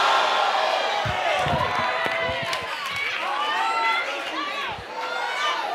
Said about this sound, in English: Ladies, I need y'all screaming. Men, I need y'all screaming.